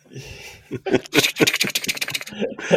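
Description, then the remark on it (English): Rapid, dense clicking of fingers furiously typing on a keyboard, fairly loud, in a fast irregular burst that starts after a brief pause and runs for a couple of seconds before tapering. “I'm furiously typing.”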